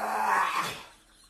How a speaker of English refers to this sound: That is a fucking dog sitting on a couch and just gagging. It's real.